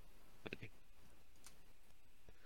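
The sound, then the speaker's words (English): A microphone switch clicks on and off: a quick cluster of sharp clicks near the start, then a couple of isolated clicks later, with no talking. “Yeah, I have a roommate and I have to keep my mic off, so that's clicking on and off of my mic here.”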